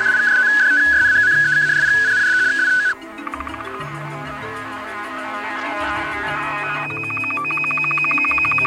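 A steady high electronic tone sounds for a few seconds, then gives way to rapid regular ticking pulses over a hissy background, ending with another sustained, higher beep: a shortwave radio time signal on an extract from a cassette tape.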